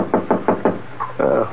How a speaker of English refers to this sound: I must have dozed off, because it took me a while to realize that the sound I heard was a knock on my door.